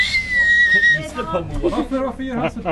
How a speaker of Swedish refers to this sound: Vissla på han